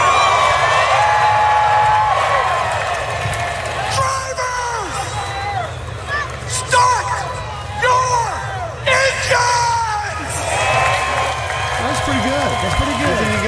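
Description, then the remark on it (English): A large NASCAR race crowd roars and screams continuously, with scattered whoops and yells rising above the dense, loud din of cheering. “Are you guys screaming, everybody?”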